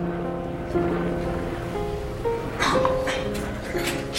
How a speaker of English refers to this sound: This is audio of Warren being flown in on a helicopter from the jail in Hurricane, Utah. The jail is called, and I'm not kidding here, purgatory.